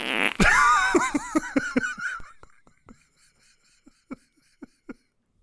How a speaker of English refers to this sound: I'll cover that up. Go ahead. There'll be no more farts.